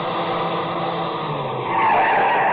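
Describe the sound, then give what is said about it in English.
A car engine whines steadily as it comes over the rise of a rough road at night with its headlights on, then tires skid and screech loudly over rough ground near the end, with no voices. “I heard the whine of a car coming over the rise in the rough road as the first glimmer of the headlights stabbed the darkness.”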